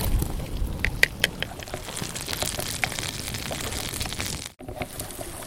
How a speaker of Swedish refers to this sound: Nu har vi hällt i det här smeten över sidfläsket.